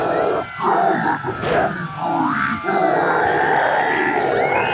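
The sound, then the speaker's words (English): A large, energized crowd in Iowa roars and bellows continuously at a political candidate, with loud overlapping shouts and cheers swelling and dipping briefly before surging again full. “Wow, it sounds like people are really energized.”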